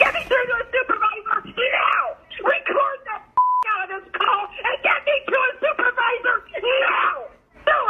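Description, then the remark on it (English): A woman lets out long, strained, zombie-like wails and moaning screams over a tinny phone line, nearly continuous, broken once by a short electronic beep midway. “But it wouldn't have taken long for me to get from where I was to this lunatic zombie lady screaming.”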